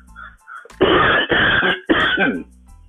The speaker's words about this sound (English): Excuse me, that's a little cough.